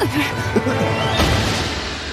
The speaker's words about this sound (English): Oh! Oh no! Punching a child? Yes. Yeah. Oh my god, that was...